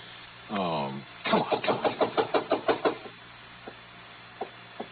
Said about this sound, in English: Driving fast, but a lot more carefully, I went to Rolinoff's address.